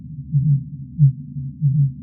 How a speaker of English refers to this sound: We detected between 10,000 to 18,000 fin whale calls a day.